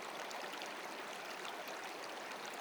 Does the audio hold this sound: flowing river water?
yes